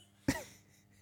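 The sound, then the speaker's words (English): A single sharp sneeze bursts out of near-silence, a loud breathy explosion with a brief voiced tail that fades quickly, leaving a faint low hum behind. “can we write down the time of me sneezing, please?”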